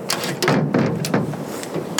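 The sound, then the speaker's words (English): A window rattles in its frame as a bird batters at it from outside trying to get in: a string of sharp, irregular knocks and clatters; no one speaks. “Nat, the window. See to it. It's rattling.”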